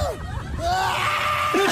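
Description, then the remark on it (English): A person riding at the front of a roller coaster lets out a loud, sustained scream that rises and wavers in pitch, filling most of the short moment, with a brief breathy vocal break near the start. “Can I just say, whatever about my scream, when we were in the middle of the roller coaster,”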